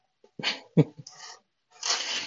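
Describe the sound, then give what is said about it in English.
A cat meows loudly as it comes into a room, a few short, strained cries in quick succession followed by a longer, harsher yowl, with no one talking. “Oh my goodness, we have a loud cat coming in the room.”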